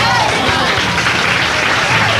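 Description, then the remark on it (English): In a recording, a crowd applauds loudly and steadily, people clapping and cheering each other on that they are going to end it all; dense clapping blends with cheers and voices shouting over it throughout the short stretch. “So there are people that are clapping that they're going to end it all.”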